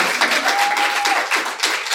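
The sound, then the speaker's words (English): A crowd applauds steadily, many hands clapping in a dense, continuous patter at a fairly loud level, with no voices over it and a brief thin tone sounding partway through. “Hey, you can clap.”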